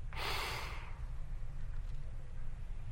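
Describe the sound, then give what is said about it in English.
A single deep, sharp gasp: a sudden rushing inhalation lasting under a second, fairly loud, followed by a quiet low rumble. “And so it's how deep can you go with your gasp?”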